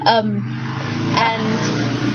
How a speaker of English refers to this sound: Sorry, that's traffic.